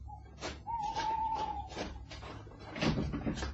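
Someone tries a locked door, rattling the handle in several sharp clunks, with a brief high squeak of metal in between.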